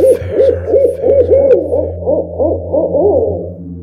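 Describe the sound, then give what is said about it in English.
A rapid series of wavering owl hoots, about ten in quick succession, growing more tangled and overlapping toward the end, heard over a steady low background hum. “Finding yourself in the talons of an owl and the shadows of the forest moonlight.”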